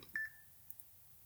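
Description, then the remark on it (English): A timer gives a short, high-pitched electronic beep marking that the time to answer a question is up; it rings briefly and fades out, heard alone against a faint low background hum. “That's what the beeps sound like.”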